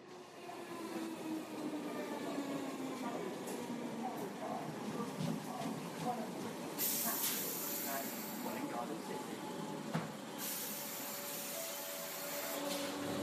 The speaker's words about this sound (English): I'm whizzing down on a train to London for work.